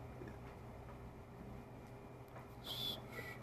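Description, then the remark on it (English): A brief, high-pitched whistled chirp near the end, a voice's attempt at imitating a cricket, heard over a low, steady background rumble with no talking. “I can't do the cricket noise.”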